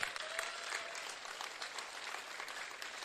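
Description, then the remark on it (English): An audience claps in praise, a steady wash of many hands applauding at once, dense and even throughout with no talking over it. “Come on, if you believe it, I want you to give God a clap of praise right now.”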